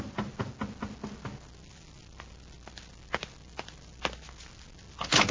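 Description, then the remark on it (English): A quick run of sharp knocks at a room door, about six evenly spaced raps, followed by a few scattered softer thuds and a brief rustle, with no talking. “An hour later, there's another knock at the door.”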